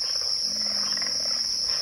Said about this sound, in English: Birds, pig frogs, and the deep growl of an alligator greet the visitor out for a stroll through the morning mist. These digital recordings were assembled for the ….